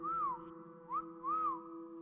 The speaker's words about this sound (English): When the whistle came a third time, Caleb peered out into the darkness and returned it.